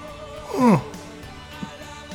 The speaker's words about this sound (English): Now I'm self-conscious and I can't yawn right. I can't yawn right. That's the problem. Because it's like involuntary, so if you can't do it right, you're doing it really wrong.